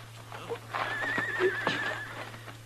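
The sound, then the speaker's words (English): A horse lets out a wavering, high whinny lasting over a second, with a few sharp hoof clops on hard ground around it, over a low steady hum. “I'll take my horse then”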